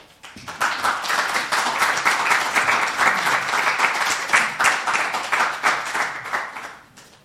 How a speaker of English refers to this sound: I think we just need to give another hand clap for all those wonderful poets.